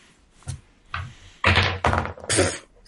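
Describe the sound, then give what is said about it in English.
Twenty-sided dice (d20s) rolled by two players in a game, rolling and clattering: a couple of light taps, then several louder bursts of tumbling rattles in quick succession, with no voices. “each of you roll me a d20.”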